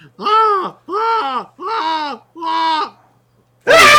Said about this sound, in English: Anyone want to know the scream that the lady does in this episode?